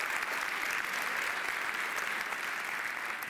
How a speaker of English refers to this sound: So give these guys a round of applause as they make their way out here.